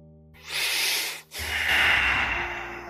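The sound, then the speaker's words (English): Heavy breathing: two long, loud, airy breaths, the second drawn out longer, with no talking. “My warm breath everywhere on your body as I take my mouth from your forehead down to your toe, breathing heavily as I feel I want to.”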